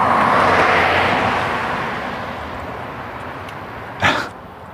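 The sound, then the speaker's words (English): A little Scotty dog gives a single short, sharp bark near the end, following the steady roar of a passing aircraft that slowly fades away. No one speaks. “That dog likes me.”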